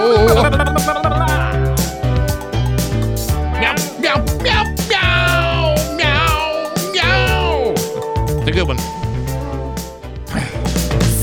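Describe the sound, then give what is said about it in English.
Repeated cat meows, drawn-out and rising then falling, ring out over a loud, steady backing of music with heavy bass and a driving beat. “Meow, meow, meow, meow, meow, meow.”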